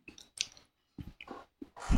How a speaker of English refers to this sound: It's lots of chewing sounds for the podcast. I know, gross, right?